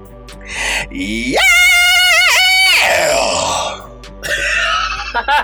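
A single loud, sustained rock-style vocal scream, starting gritty, rising to a piercing held wail, then breaking into a raspy, fading roar, with brief breathy vocal noises before and after.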